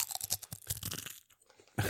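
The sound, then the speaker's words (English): Loud crunching right at the microphone as a Lay's potato chip is bitten and chewed, a burst of crackly snaps followed by a short pause and another crisp crunch at the end. No talking. “That was a good crunch in the mic.”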